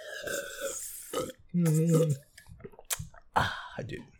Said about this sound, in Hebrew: ואני אקח שלוק, וזה עדיין לא 3 דקות אפילו של הפודקאסט, ואני כבר שותה מים.